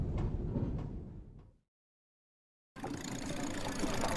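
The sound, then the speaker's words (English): A rumbling car engine and street traffic noise fade out into a second of silence, then a louder, steady wash of busy street traffic resumes. “watch out for the buckboards in that car.”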